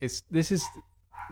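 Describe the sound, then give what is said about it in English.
A dog gives a few short barks in quick succession, with a brief pause before one last yip. “This is your woof.”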